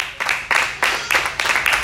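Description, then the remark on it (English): A crowd claps together in a steady rhythm, with loud, dense applause swelling in regular bursts, full, with no voices standing out; the crowd is clapping for God. “Can we clap for God?”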